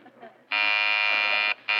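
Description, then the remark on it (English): A front door buzzer sounds a loud, harsh electric drone for about a second, breaks briefly, then starts buzzing again. A faint low murmur comes just before the first buzz. “It's the front door.”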